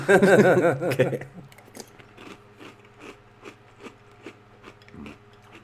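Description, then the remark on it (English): Someone eats cereal with 2% milk, a steady series of soft crunchy chews following a brief burst of voice at the start, with a low hum running underneath. “Hey, do you mix your cereal with your milk?”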